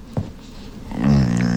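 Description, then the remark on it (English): A female dog gives a short, low, rumbling happy growl while being scratched, starting after a brief snuffly sound and holding steady for about half a second. “Okay, so we have a dog staying with us who's been here since the beginning of the pandemic, and she does this like happy little growl, but she only does it with my boyfriend.”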